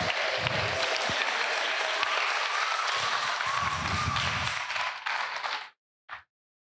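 A crowd bursts into sustained applause, many hands clapping densely with a few low thumps underneath, fading out after about five seconds, followed by one brief final clap.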